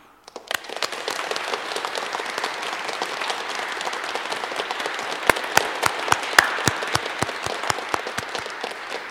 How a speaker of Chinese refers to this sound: 现在让我们以热烈掌声祝贺并接纳他们。